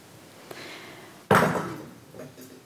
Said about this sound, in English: If anybody else wants to drop a metal water bottle.